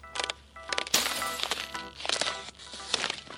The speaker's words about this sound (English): When Grace writes her origin story, she will begin with the first time she turned one piece of glass into millions.